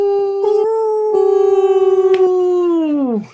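A single long wolf howl, loud, holding a steady pitch for about three seconds before sliding downward and fading out. No one speaks.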